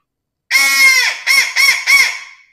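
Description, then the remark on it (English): A crow feed call: one long, harsh caw followed by three quick, clipped caws in a rapid burst, loud, with no voices. “And then on a crow, we just do a feed call. So it's like one blast followed up by three quick crow notes.”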